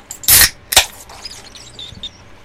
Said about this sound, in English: Either way, you're going to hear the awesome trademark noise of a beer being opened. And the widget.